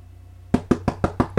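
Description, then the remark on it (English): Six quick, sharp knocks on a door in a steady rhythm, loud, following a short stretch of near silence with a low hum underneath. “Just open the door. Who is it?”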